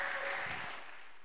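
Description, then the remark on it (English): An audience at a worship service claps together in a dense, steady patter of many hands, fairly soft and fading slightly toward the end, with no voices over it. “Can I get a clap in the house now?”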